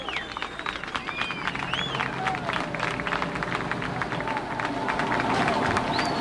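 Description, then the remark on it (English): A crowd claps steadily as a rescued girl is brought up from a shaft, with dense, overlapping applause mixed with cheers and a few high whistles, building slightly louder toward the end. “There's clapping.”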